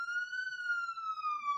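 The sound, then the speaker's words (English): An emergency vehicle siren sounds alone: a single sustained wailing tone that sags slightly in pitch, heard from outside at moderate volume, with no talking. “I can hear a siren. It's very distracting. Someone's called the fire brigade.”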